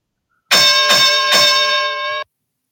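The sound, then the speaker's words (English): A loud ringing bell struck three times in quick succession, its bright metallic tone sustaining briefly before being cut off abruptly. No voices are heard. “So let's ring the bell here.”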